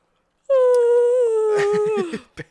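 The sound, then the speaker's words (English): A big, loud yawn voiced as a long drawn-out tone, holding steady for over a second before sliding downward and trailing off into breathy huffs, with no talking. “Ooh, big yawn.”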